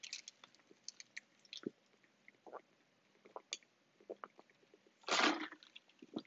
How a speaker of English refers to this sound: Let me take a little water break before I go into this one.